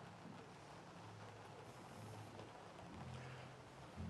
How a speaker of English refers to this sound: Rain is dropping beautifully.